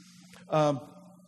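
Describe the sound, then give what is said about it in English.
A steady low electrical hum from an audio system drones underneath throughout, interrupted midway by a short burst of a man's voice before the hum continues alone. “Now, guys, I'm hearing a hum. If there's any way we can adjust that or do something with that.”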